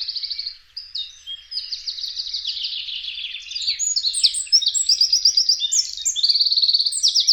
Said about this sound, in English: There's another group of very familiar birds in the chorus, the wren.